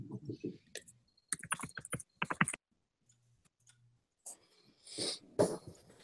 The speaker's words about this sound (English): My dogs are barking. I'm embarrassed.